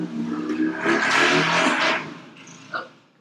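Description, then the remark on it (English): A motorcycle gang roars past, the engine rumble swelling loudly and then fading away within a couple of seconds, followed by a brief clatter as the noise trails off. “Motorcycle gang just passed by.”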